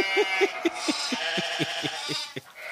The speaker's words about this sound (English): Sounded like sheep. They did.